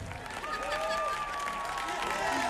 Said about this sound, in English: Yes, look at that. Wild, wild applause for you there